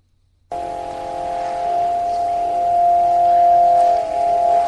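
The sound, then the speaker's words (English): Steady, droning electronic Spiricom tones begin abruptly after a brief silence and hold for several seconds: a stack of buzzing, organ-like pitches that swell slightly and hum on continuously without a break, followed by a faint whisper said to say "It's me." “You hear the Spiricom tones, and then a little bit of a whisper say, "It's me."”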